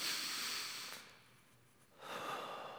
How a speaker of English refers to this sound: Close your eyes. Just a posture of surrender. Take a deep breath.